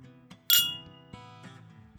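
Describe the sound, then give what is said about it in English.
A single bright clink of a tasting glass of high-proof spirit rings out, followed by softer taps and a lingering ring over a low steady hum, with no voices. “That's what happens when I hold it by what it's supposed to be held.”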